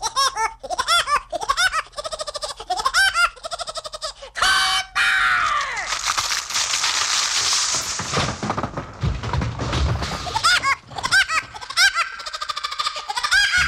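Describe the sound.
A cartoon woodpecker's laughing call, voiced by a man on a novelty song record, repeats in quick staccato bursts, breaks for a loud, noisy musical passage, then returns with more rapid chattering laughs.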